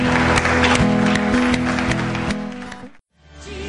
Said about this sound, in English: Come on, can we just give Jesus some applause this morning, everybody? Come on. Love you, Lord.